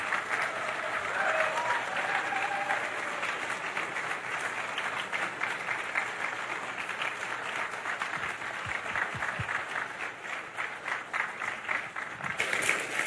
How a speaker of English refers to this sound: And so would you join me in a big, big round of applause to all of the people on stage here.